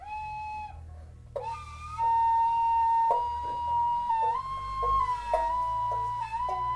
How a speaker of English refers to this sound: Whistles are played from the gut.